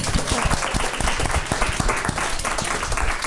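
A crowd breaks into steady applause, many hands clapping in a dense, continuous patter that stays loud and even for the whole few seconds, with no one speaking over it.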